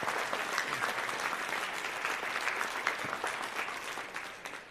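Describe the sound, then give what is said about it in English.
A church audience applauds steadily in praise of God, dense overlapping claps forming a sustained wash of sound that holds level for several seconds before beginning to taper off at the end. “How about we just take a second and just praise God and applaud for all the things that God has been doing in our church community.”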